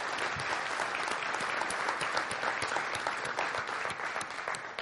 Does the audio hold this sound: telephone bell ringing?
no